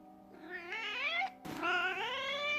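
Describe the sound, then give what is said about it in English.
A cat yowls loudly in two drawn-out, rising wails, with a short sharp break between them and no talking. “Strong words of wisdom, a passionate call to action, all delivered from a cat.”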